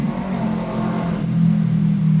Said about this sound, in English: Car.